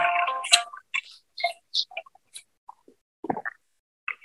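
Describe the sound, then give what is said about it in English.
A phone's message-sent notification plays as a scatter of short electronic chirps and ticks, some bright and high, a few lower blips, with brief gaps of silence between them. No one speaks. “So if you heard, I got a notification sound letting me know that that message was sent.”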